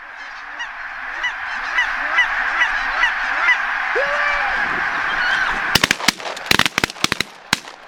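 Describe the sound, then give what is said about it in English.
A dense chorus of geese honking and calling over one another, steady throughout, then a rapid series of sharp, loud bangs breaks in during the final two seconds. “blind at calling and flagging that is going on when birds are working.”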